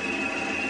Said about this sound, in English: Hear it? This is the sound of medium-frequency active sonar.